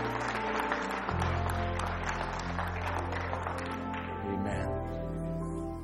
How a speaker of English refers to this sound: Church, can we give God a hand clap of praise this morning?